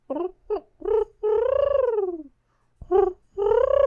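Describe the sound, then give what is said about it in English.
A person imitates a dove, pitched a little too high, voicing a few short coos followed by a long, drawn-out falling coo, then after a brief pause two more coos, clear with no other sounds. “that's what a dove sounds like, if you don't know.”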